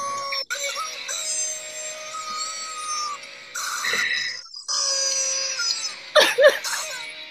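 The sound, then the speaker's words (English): An angry chicken in a video squawks and screeches loudly, drawn-out shrill cries broken by harsher bursts partway through and again near the end, with no one talking. “Why did he yell so loud?”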